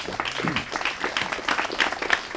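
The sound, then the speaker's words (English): An audience applauds for a woman, many hands clapping in a dense, crackling patter that stays fairly loud and even for a couple of seconds, with no one speaking over it. “I just want everyone to clap for her.”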